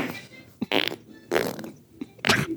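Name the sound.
fart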